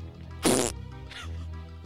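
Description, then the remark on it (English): A short, loud fart from someone squeezed hard bursts out, a raspy buzzing blast lasting about a quarter second, followed by a fainter, breathier squeak a moment later. “Squeezed me so hard I farted.”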